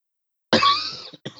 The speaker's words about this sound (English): You all right there, man? Sorry. There's that cough.